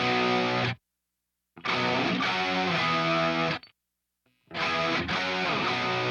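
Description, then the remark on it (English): Tight, overdriven electric guitar plays in three loud, dense bursts separated by abrupt silences, the distorted chords sounding compressed and punchy with no voices present. “Yeah, it's still overdriven, but very, like, tight.”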